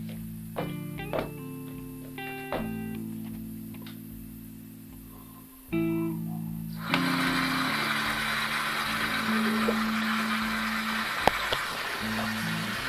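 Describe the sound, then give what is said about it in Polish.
A refrigerator running: a steady low motor hum with layered tones that shift pitch a few times, joined partway through by a broader rushing hiss. No one speaks. “O, lodówka jeszcze pracuje.”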